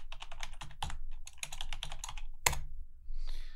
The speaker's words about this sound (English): Hang on. Let me use my really quiet keyboard. Hang on.